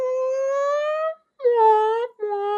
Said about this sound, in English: I was like, are those sirens or weird birds? It was hard to understand what that was, but I think it was sirens, but yeah, I heard it too. Yeah. Very mournful sound.